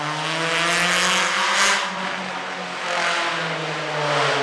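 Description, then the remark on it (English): A loud motorcycle engine revs steadily, heard from a city garden, its droning pitch rising and falling over a wash of city traffic noise, with no voices. “Yes, in the garden you can hear everything, trucks, airplanes, loud motorcycles”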